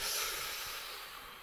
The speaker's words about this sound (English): I enjoy breathing.